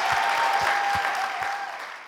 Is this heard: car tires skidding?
no